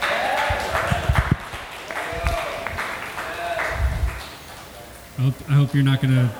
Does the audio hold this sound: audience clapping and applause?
yes